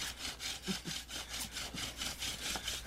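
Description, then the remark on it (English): Wood rubs hard against wood in a steady back-and-forth rhythm, about three strokes a second, each pass a raspy, hissing scrape, as someone makes a primitive friction fire that gives off visible smoke and black charred dust. No one speaks. “Making Primitive Fire”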